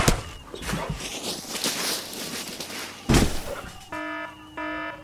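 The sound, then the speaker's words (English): After a noisy clatter of thumps and bangs, an alarm goes off with two loud, steady electronic beeping tones, each about half a second long. “You set off the alarm?”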